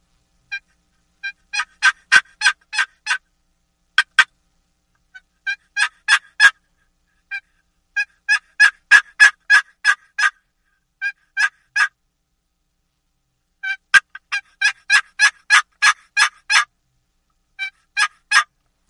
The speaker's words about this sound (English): Same way with the hen yelp, I'm going to pick up a box call, and I'm going to do a plain hen yelp with the box call.